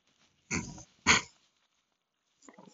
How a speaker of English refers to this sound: Yeah, there are the horses. Okay, good.